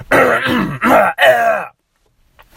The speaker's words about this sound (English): So here it goes. I'm just going to clear my throat.